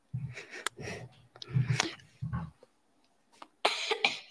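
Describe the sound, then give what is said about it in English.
A fairly loud fit of throaty coughs in several bursts from something caught in the throat, then a short pause before one last harsh, rasping cough. Nobody speaks. “There was something in my throat. I had to cough.”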